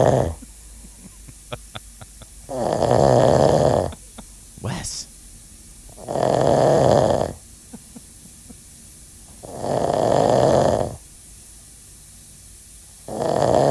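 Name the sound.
loud human snoring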